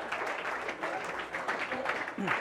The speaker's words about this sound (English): You can clap for that. That's good.